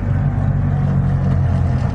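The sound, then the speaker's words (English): A Trabant car's small engine drones steadily at low speed, a rough, buzzy idle-like rumble heard from inside the vehicle as it rolls slowly over a speed hump coming out of a car park at about 10 miles an hour. “Just negotiating a speed hump as we come out the car park here at a massive 10 miles an hour.”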